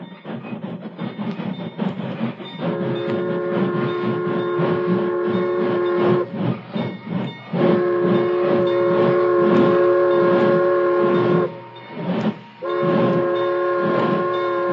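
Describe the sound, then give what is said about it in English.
A train rumbles by, sounding three long, loud whistle blasts with brief gaps between them over the steady clatter of its approach, coming to a stop where logs block the rail. No one speaks. “Keep out of sight, you fellas, till the train stops.”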